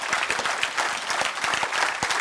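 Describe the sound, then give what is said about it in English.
An audience at a church service claps their hands in a dense, steady burst of applause, many overlapping claps at a fairly loud level with no talking. “And not everybody can do it all, but I'm going to wait while you clap your hands right there.”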